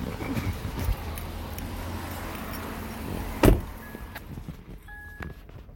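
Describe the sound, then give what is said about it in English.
A car door thuds shut, then a car's warning beep sounds twice because the key fob has left the vehicle, short steady electronic tones over a low interior rumble, with no one speaking. “Is that gonna beep the whole time since the keys are out of the car?”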